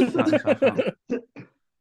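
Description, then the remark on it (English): A brief stretch of voiced, talk-like sound is followed by two short, separate coughs, moderately loud, with a small gap between them, from a person who has had a cough for the last couple of days. “See, I've been dealing with a cough the last couple of days, so I was about to start coughing again.”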